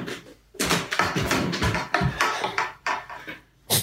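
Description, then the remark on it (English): A heavy object tumbles down a flight of stairs in a rapid series of loud, uneven thuds and clatters lasting a few seconds, ending with one last hard bang. “Something heavy fell. Because you can hear it go down the stairs.”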